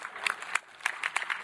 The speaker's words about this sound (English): Thank you for that half a hand clap somewhere out there.